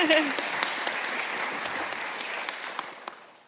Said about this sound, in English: Yeah, definitely clap.